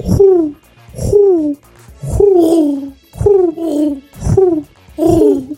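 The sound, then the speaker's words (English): A person imitates a dove's coo with their voice, repeating six soft, warbling hoots in a steady rhythm, each a low, wavering tone with a slight rise and fall. “How can you roll your R's but you can't fucking coo?”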